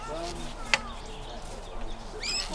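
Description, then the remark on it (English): A small songbird, being fitted with a size 0A band, gives a few harsh, squawky chirps, with a brief sharp click partway through and a low murmur of people in the background. “Yeah, a little squawker. He's a little bit more vocal here.”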